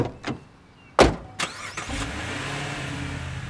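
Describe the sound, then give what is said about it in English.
A few sharp thuds and clicks, like car doors closing, then a car engine turns over and settles into a steady, rising hum as the vehicle starts to pull away to drive back to Beloit. No one speaks. “We all hugged and said hi and all that, and we put her in the car and commenced to drive back to Beloit.”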